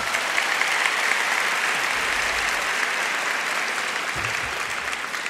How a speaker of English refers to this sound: Big round of applause for all of them.